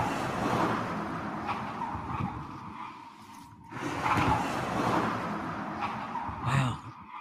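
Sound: car speeding past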